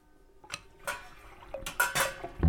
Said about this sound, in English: Take a kettle, open the faucet. Watch the water running in a stream into your kettle.